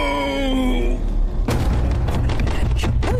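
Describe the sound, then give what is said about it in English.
Heavy, booming blows pound on a door in an uneven burst of several hits, following a steady wavering tone, with loud low thuds filling the second half. “I think someone had better answer before they take the door off.”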